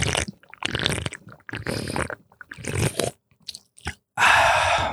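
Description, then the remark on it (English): Several wet, crackly mouth sounds of someone sipping fizzy seltzer, irregular gulps and slurps, ending in a louder hissing burst of carbonated fizz. “So here's a little sip on mic.”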